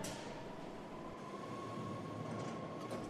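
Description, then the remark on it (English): A train rumbles past in a steady, continuous roar of wheels and rails, with a faint sustained tone running through the noise and no voices. “Here's a train now.”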